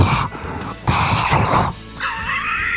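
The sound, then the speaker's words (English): A voice imitates vaginal flatulence with a few loud, sputtering, breathy bursts that trail into a higher, whiny squeak at the end. “And it also saves you from hearing her pussy farts. Yeah, if you got a lot of air, you go...”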